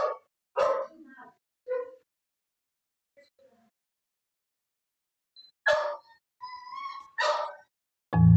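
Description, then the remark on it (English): A dog whines and cries in several short, high-pitched bursts separated by quiet pauses, with a few sharper yips mixed in, clear, ending in a low thump. The dog is crying to be let outside, upset at being kept in while another dog is out in the front yard. “She cried until I let her out.”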